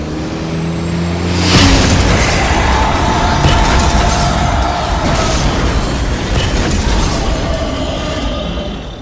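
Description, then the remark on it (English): A car engine hums with steady tones, then a sudden loud explosion erupts as the car, Carface, smashes into the leader of a pack of monsters and bursts into flames. A sustained, roaring rumble follows, with scattered crackles and debris-like bursts as the flaming chassis tumbles, slowly fading. “He exploded!”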